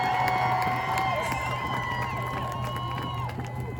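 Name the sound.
crowd cheering and clapping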